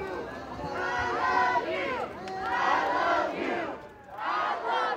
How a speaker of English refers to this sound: 100 feet away, counter-protesters stood behind another barrier, and for 20 minutes, the groups carried on a dialogue through megaphones, shouts, and chants. And at one point, this chant goes up from the marchers, "I love you."